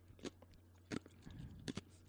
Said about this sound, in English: You're chewing. I'm chewing on ice.